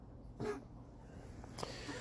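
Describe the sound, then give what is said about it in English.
A Chihuahua with allergies gives two short, raspy coughs about a second apart, faint and breathy over a low steady hum, with no one talking. “And of course you're gonna hear the Chihuahua coughing down there. He's got his allergies already again.”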